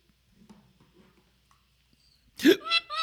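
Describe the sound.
Three quick, sharp, loud hiccups burst out in rapid succession, each with a squeaky voiced catch, after a stretch of faint, low murmuring.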